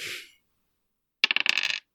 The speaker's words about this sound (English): And just like you threw that out there, I'm going to throw the dice.